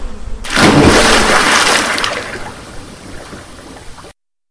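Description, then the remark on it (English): A loud, sudden splash as a man is pushed into a river, followed by several seconds of churning, sloshing water that gradually settles. No voices are heard. “I had to push him in the river to save him.”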